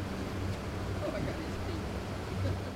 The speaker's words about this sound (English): After a boat ride back to the south shore of Fontana Lake, we all get out, everybody says their goodbyes